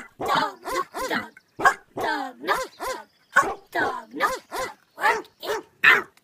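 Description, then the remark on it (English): A white American Eskimo dog barks in a rapid, steady run of about a dozen sharp, high-pitched yappy barks, each short and evenly spaced with brief gaps between them. “It's an American Eskimo. It's white.”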